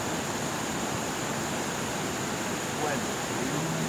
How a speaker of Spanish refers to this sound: Mira, está algo hermoso. Justo encima de la cascada.